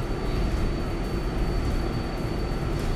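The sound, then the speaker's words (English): A steady, heavy low rumble fills a nearly empty moving subway car, the continuous roar of the car with a faint high whine running through it, no voices present. “By the way, everyone, we're in pretty much an empty subway car.”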